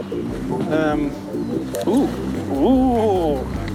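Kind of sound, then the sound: animal, bullfrog calling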